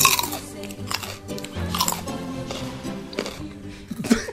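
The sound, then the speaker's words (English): Loud crunching on a raw carrot as vegans eat their morning carrot, with repeated sharp bites and chewing in an uneven rhythm across the few seconds, the brittle snaps standing out clearly. “Oh, it's time for our morning carrot.”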